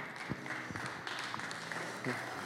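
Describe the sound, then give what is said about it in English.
An audience claps in a steady, dense patter of overlapping hand claps, with a few sharper claps standing out and faint voices mixed in underneath. “Can we clap for them one more time?”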